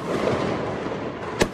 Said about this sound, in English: Just enjoy the fireworks.